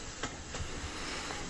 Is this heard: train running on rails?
yes